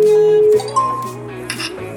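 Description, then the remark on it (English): The Telegram app's incoming-call ringtone plays alone: loud, bright chiming tones that hold a note, then step through a short melodic phrase of several pitches. “That's the Telegram ring.”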